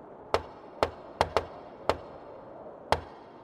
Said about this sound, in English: dub in a real cool guy knock for Amy at this point